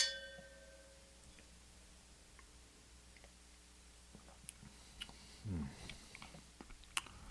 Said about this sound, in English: There you go. Let's take a sip. Try it. Cheers. Cheers, sir.